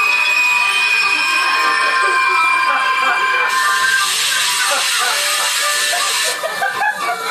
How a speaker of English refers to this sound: But our revelers are abruptly awoken when the train screeches to a sudden halt.